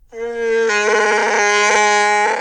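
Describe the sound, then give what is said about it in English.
A Wookiee roar like Chewbacca's: one long, loud, throaty bellow with a rich, buzzing tone that wavers and rattles slightly before cutting off after about two seconds, with no talking. “And Chewbacca roars.”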